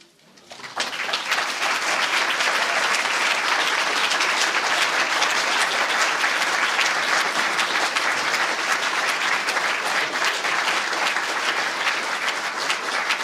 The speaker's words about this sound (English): Thank you again for coming, everybody. And thanks again to the young writers. Maybe one more round of applause for all of them.